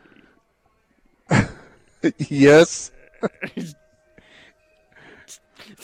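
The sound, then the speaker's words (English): A person hollers to call cows: one loud, drawn-out cry with wavering, sliding pitch, framed by shorter vocal bursts and whoops. A brief spoken word is also heard. “Speaking of Arkansas, did it sound anything like this when she was calling for the cows?”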